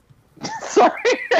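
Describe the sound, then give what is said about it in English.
A fairly loud sneeze: a breathy build-up followed by sharp, explosive bursts in quick succession, with no talking around it. “Bless you.”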